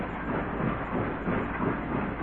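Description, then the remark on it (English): A freight train rumbles steadily past, a dense rattling roar with a faint rhythmic pulse running through it, continuous, with no voices. “It just went chugging off past Burns Diner and into the night.”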